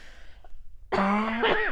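After a quiet moment, a drawn-out voiced yawn rises loudly, with a short, rough cough bursting over it near the end before the sound tapers off.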